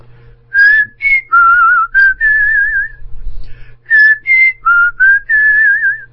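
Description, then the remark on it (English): A person whistles a clear, warbling tune in two bursts of short notes and longer wavering tones, with a brief pause in the middle and a low hum underneath. “And then she heard the angel whistling.”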